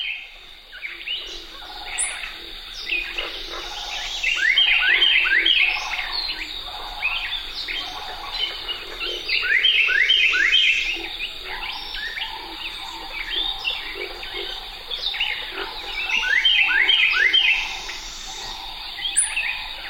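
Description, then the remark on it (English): A Carolina wren sings loud, ringing bursts of rapidly repeated phrases, returning every few seconds, over a steady background of insect buzz and other birds. “A solo by a Carolina Wren dominates this recording”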